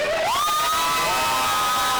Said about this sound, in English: All right, guys, and I also want to encourage you to cheer for your favorite competitor because the team that cheers the loudest for their favorite person wins a trophy. Trophy.